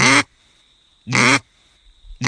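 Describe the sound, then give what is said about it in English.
A duck call blown while voicing the word "quit" through it gives loud, raspy quacks, three short bursts spaced about a second apart, alone, with a faint steady high whine lingering between them. “So I've got a call here, which is my number one go-to call, which I'll do nothing, no voice or anything through it. And now I'll do my quit with voice.”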